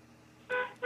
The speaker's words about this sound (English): I need you to honk the horn if you're trying to get this gas in your car right now. Honk your horn for me, please.